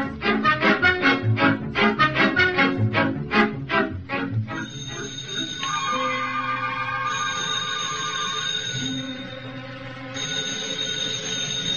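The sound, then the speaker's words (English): A telephone bell rings in a loud, rapid metallic trill for about four seconds, then gives way to steady, sustained high ringing tones that hold to the end, in the Cavalcade of America radio play Spin a Silver Dollar. No one speaks. “Hear that telephone bell?”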